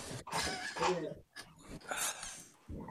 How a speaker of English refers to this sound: I can hear them. I hear like 12 legs. I'm just starting the meeting. Oh, wait a minute. Wait, come here. Oh, the dog is here. Hold on.